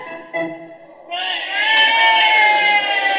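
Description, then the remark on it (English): A crowd at a wrestling match between Gorgeous Frog and Big Boy Bear roars loudly. A brief burst of voices swells after a second into a sustained, dense wall of cheering and shouting that holds steady to the end. “Hey, gee whiz, Dippy, listen to that crowd roar.”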